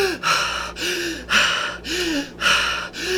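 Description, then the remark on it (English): Forceful breaths come in a quick steady rhythm, about six audible pulls of air in a few seconds, deep inhales into the belly during a guided breathing exercise, over a faint low hum, with no talking. “Into the belly. Here we go. Last one.”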